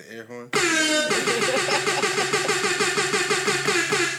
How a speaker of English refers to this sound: Air horn.